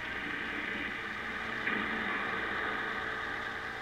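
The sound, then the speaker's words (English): The engine of a free sightseeing tour bus for tourists in Los Angeles, touring Beverly Hills, runs with a steady, even drone heard from inside the bus, continuous and moderately loud, with one faint click partway through and no voices. “So let's take a tour on one of these buses and see what it's like.”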